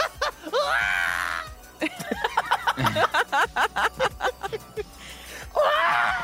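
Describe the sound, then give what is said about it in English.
A voice imitates R2-D2 droid noises: a rising, warbling whistle, then a quick run of short chirpy beeps, and another wavering high whistle to finish, all fairly loud with no talking. “You sound like R2-D2.”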